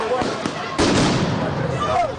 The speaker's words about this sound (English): Sound bombs and rubber bullets were fired, and tear gas was hissing all around. The officers repeatedly charged the demonstrators.